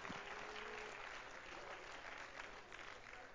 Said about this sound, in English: Oh, come on, let's clap our hands to the Lord this morning.